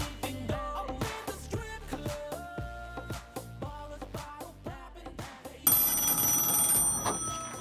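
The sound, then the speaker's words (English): A telephone in a peep show booth rings in a rapid, repeating pattern of clanging pulses, then breaks into a louder, continuous bright trill for the last couple of seconds. It's clear, with no one talking. The phone has been wiped down. “That phone has been wiped down.”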